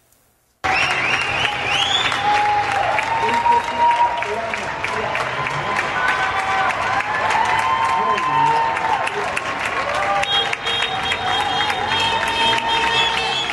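Many people confined to their homes applaud together from their windows and balconies, thanking doctors, nurses and medical technicians at 8 o'clock: a dense, steady wash of clapping that begins abruptly and holds at full loudness, threaded with scattered shouts of "Viva los médicos" and clanging, banging pots throughout.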